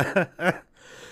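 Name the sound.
cough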